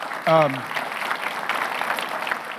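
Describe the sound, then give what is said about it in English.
An audience breaks into steady, dense applause that carries on at an even level, opening with a short voiced whoop whose pitch slides downward. “You could clap.”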